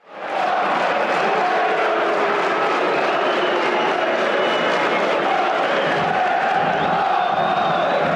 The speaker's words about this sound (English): Barnsley fans delighted, Charlton fans booing.